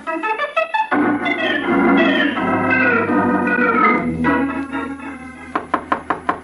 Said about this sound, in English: All right, you don't have to break down the door.